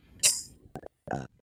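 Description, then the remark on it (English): A breathy hiss, then two short, croaky burps in quick succession, moderately loud, with brief silence between them. “…, stop burping.”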